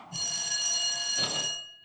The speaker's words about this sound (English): And this is the bell that they ring before the court, which is very much like recess. So I got a big high school vibe out of that.